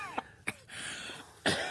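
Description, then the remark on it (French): A woman coughs, two short sharp coughs followed by a louder, heavier one after a brief pause, over a faint steady background. “Ne tousse pas”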